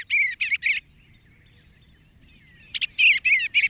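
tree swallows calling

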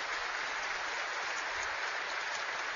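applause

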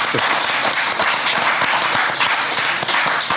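clapping applause

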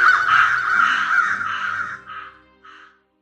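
crows cawing

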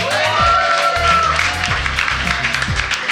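audience cheering and applause

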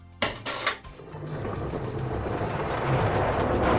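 washing machine running

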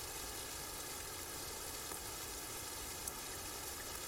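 rain falling

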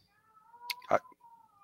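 domestic cat meowing

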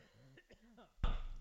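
cough

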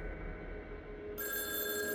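telephone ringing

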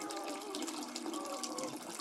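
water running

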